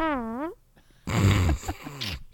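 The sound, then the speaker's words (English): A person makes a vocal burp imitation: a short, wavering hummed tone, a brief pause, then a long, low, rough and gravelly belch-like rasp lasting about a second, fairly loud. “Hit me with an impression of a burp.”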